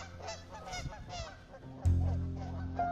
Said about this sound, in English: And you know those geese will go at it and they will absolutely kill each other.